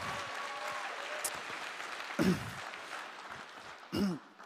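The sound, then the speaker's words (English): A crowd applauds steadily in a dense, even wash of clapping for several seconds, with two brief louder vocal bursts, like cheers or exclamations, rising above it near the middle and end. “Let's give him a round of applause, okay?”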